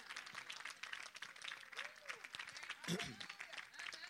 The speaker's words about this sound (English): Clap your hands and begin to praise God.